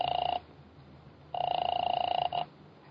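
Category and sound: household object, telephone ringing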